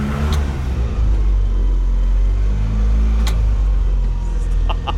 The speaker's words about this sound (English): Yeah, it smells like diesel. I love fuel. This smell. It smells like a go-kart track. Stop revving it, dude. I can't help it.